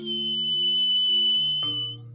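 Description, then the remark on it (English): One long, shrill note blown on an acorn whistle holds steady for about two seconds over a low humming drone, then cuts off as the lower tone shifts. No one speaks. “The warrior blew a single shrill note on her acorn whistle.”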